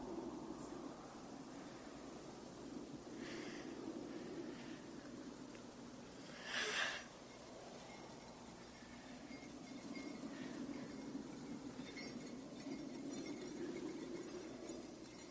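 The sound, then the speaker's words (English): On Christmas Eve under a full moon, a brief, bright jingle of bells rises for about a second midway through, over a steady low rumble like a moving train that continues throughout. No one speaks. “Bells.”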